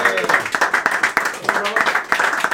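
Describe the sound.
An audience bursts into steady applause, a dense patter of many hands clapping at once, loud, with some voices calling out over it throughout.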